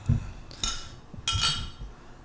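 Two bright glassy clinks ring out about half a second apart as wine glasses, one a giant glass of wine, are touched together in a toast, each with a short shimmering ring that fades quickly.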